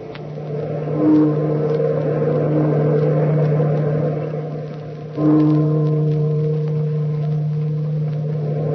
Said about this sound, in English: Bellkeeper, toll the bell!